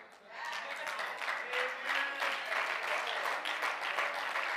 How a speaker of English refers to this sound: Sunday school teachers, you need to be clapping your hands real loud. No?